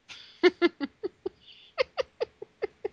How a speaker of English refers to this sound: That's a lot in just one meow.